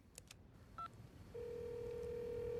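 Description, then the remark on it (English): A phone hidden inside a vase of flowers clicks as it is picked up, a single short keypad beep sounds as speed dial 1 is pressed, then a steady electronic tone begins and holds until the end. Clear, with no voices. “So she picks up the phone that is stashed inside the flowers and speed dials 1.”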